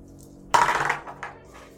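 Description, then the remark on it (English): A pair of six-sided dice are thrown onto a hard surface: a sudden bright clatter of tumbling knocks, then a couple of softer clicks as they settle and stop, totaling 8. “Should we roll for it? Absolutely. Okay. Who has more room for activities? So, two dice six.”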